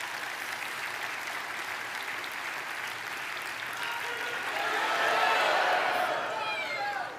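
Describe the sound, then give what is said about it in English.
Sustained applause from an audience clapping for a man as he walks, a dense steady patter of many hands clapping that swells louder toward the end before tapering slightly, with faint murmuring voices mixed in. “You clap for him as he walks.”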